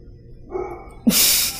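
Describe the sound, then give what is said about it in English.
A dog gives a brief whine followed by one sharp, breathy bark, fairly loud, with no talking around it. “Just ignore Marty in the background. Bark. Bark, bark.”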